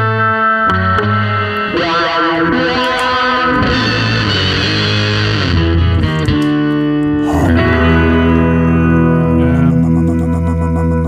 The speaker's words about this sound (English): All right, we are live. Here's the intro music.